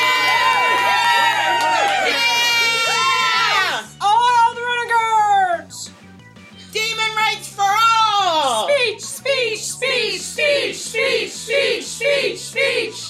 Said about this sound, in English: Nightmare, being the showboat that he is, decided to bow, and the crowd roared with more applause and cheering ensued.